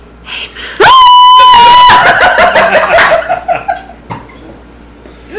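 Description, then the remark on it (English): A person loudly imitates a hog's scream: one long, piercing, sustained squeal, followed by a few seconds of ragged, warbling squeals that trail off into quieter grunty noises. “Moose hog scream as he barrels away from the hut”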